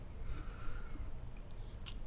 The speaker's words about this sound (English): I'm just gonna have my beer. I'm gonna have a sip of beer.